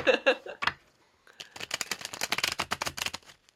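A deck of tarot cards is riffle shuffled: a few quick flutters at first, then a short pause before a longer, dense run of rapid riffling clicks that trails off.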